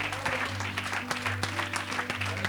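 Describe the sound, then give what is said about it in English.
A church audience applauds steadily during a service, giving a hand clap to the Lord, dense overlapping hand claps at moderate loudness, with a low electrical hum running underneath. “I wonder, would you give that hand clap to the King of Kings and to the Lord of Lords?”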